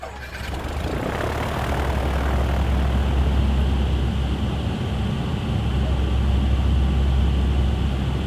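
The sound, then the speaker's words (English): A loud, steady drone of a C-130's turboprop engines fills the cabin at night, a deep rumbling hum with a hissing roar on top, unbroken and constant for the whole stretch. “The only thing you can see inside a C-130 at night like that is this, the red jump light above the jump door and down on the floor, and there's this hum of the plane.”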